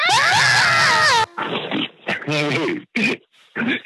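A person lets out a loud, high, strained scream lasting about a second, its pitch wavering and sliding down, followed by several short, rough, guttural vocal bursts with brief pauses between them.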